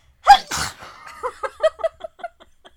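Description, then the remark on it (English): A loud sneeze bursts out in a sharp two-part explosion, followed by a trail of short, breathy vocal bursts that grow quieter and fade away. “Bless you.”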